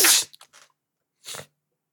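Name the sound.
sneeze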